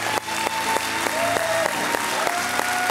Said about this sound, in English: All of you who have your hands raised, let me hear with a clap how thankful you are that Jesus saved you from your sin.